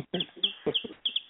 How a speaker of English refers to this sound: I hear it now. I mean, they're tiny baby chicks. They're not like clucking chicks, man.